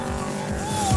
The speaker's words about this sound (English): So the car's rolling.